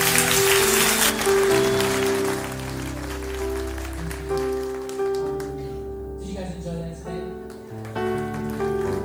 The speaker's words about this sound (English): Give God one more praise, clap of praise. Come on.